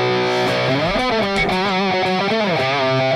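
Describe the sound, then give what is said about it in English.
A heavily distorted electric guitar, plugged into a Helix modeler and playing its main tone, plays a short, loud riff with sustained, bending notes and thick overtones, heard alone with no talking. “is plugged into my Helix. Let's hear that main tone there.”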